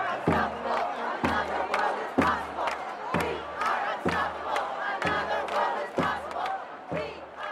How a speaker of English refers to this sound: it was really hard to tell how many people were in the crowd at that point. Well over 1,000, I would guess. And the mood was hopeful.